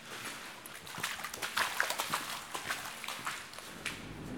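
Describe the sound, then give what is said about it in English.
A dumper truck coming back through a tunnel, heard as a steady, rattling clatter of irregular knocks and clanks over a hissing wash of echo, holding at a moderate level with no voices. “That's the dumper truck coming back.”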